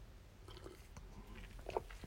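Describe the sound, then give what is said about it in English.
A quiet sip from a hot Lemsip cold-remedy drink, with soft wet slurping and small mouth clicks over about two seconds, peaking in one brief slurp near the end; no one speaks. “Hang on, I'm going to have a sip of my drink.”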